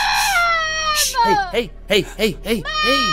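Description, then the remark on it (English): A child screams loudly at the appearance of the Smacks cereal frog mascot, starting with a long, shrill wail and breaking into a rapid series of short, arching shrieks that rise and fall in pitch, with no talking. “Hey, stop, stop screaming, stop fucking screaming.”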